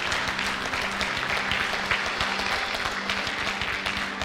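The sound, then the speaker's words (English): An audience claps their hands to praise the Lord during a church service, sustained, dense applause with many overlapping claps forming a steady roar over a low humming drone, with no clear speech. “If you believe it, would you just clap your hands and give the Lord praise in this place right now?”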